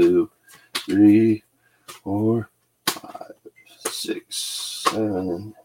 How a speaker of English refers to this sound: So I got my Oracle deck here. I shuffle them 9 times.